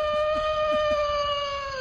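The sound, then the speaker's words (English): A wolf howl holds one steady, mid-pitched note with a rich, buzzy tone for nearly two seconds. It is loud, with no talking, and a few soft low thumps sit beneath it. “How about play the wolf sound again?”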